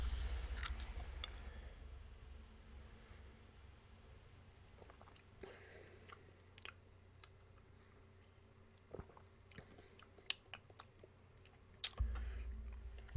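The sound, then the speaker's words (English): A can of peach pear liqueur, a fizzy alcoholic drink, is opened and poured, fairly quiet, with scattered sharp crackles and pops of carbonation over a low background hum. Nobody speaks. “I'm going to open my beverage also like a real person.”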